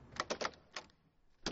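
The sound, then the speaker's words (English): A door slams shut hard with a loud, heavy bang at the end, preceded by a few quicker clattering knocks and rattles. No one speaks. “take it easy on the hinges. If I can survive, the door will too.”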